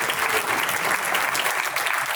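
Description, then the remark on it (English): Steady applause from a crowd, a dense, continuous patter of clapping hands at an even loudness with no voices standing out, after a candidate announces he has been endorsed by President Donald Trump. “You can wait for that applause.”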